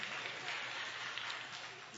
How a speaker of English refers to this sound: Thank you for those claps in the back.